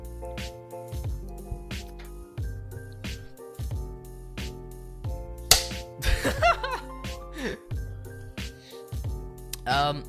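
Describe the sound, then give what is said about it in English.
A few sharp hand claps: one loud clap, then a quick uneven cluster of them, and another near the end, cutting through a steady tonal background with faint voices. “There we go, bigger clap.”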